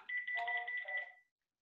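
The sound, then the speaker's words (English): A telephone rings with a robocall: a bright, warbling electronic trill, a single burst of about a second that stops abruptly. It is clear, with no voices. “Just a freaking bunch of robocalls all day long.”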